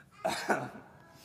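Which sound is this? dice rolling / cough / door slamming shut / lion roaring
cough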